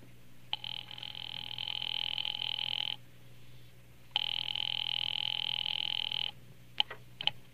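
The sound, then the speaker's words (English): A telephone rings twice over the line, calling a husband's office at a Murray Hill number. Two long, steady electronic ring bursts come with a pause between, heard a bit thin, followed by faint clicks at the end. “Ringing Murray Hill 70093.”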